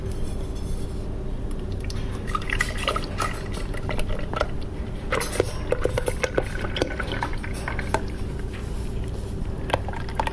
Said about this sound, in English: I'm going to start pouring it in the bucket. I'm going to do it kind of slow.